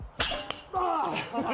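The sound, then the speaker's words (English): A loud slap as a dildo fired from a cannon smacks against someone's back, with a softer second crack just after, then a person cries out in pain. “Kinda just feels like someone smacked me on my back.”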